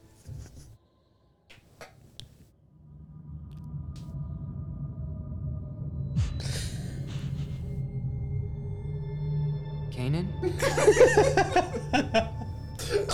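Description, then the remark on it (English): Short, breathy sniffing bursts from an animal, a few around the middle and a quicker cluster near the end, over a steady low droning hum. “Just feels sniffing behind you.”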